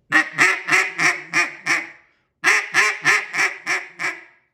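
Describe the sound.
A cut-down duck call blown as an easy quack in two runs of about six raspy quacks each, every run tapering in loudness, separated by a short pause, clear with no talking.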